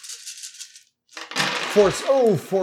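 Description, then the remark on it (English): A quick run of light, clattering rattles as dice are thrown onto a table during a game, then a brief pause before people start talking over some lingering clicks. “I was keeping die from falling off the table.”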